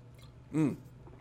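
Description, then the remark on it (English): A single quick sip and gulp of Perrier sparkling mineral water, a brief wet mouth sound with a throaty swallow, against a quiet background. “A little sip of Perrier here, and away we go.”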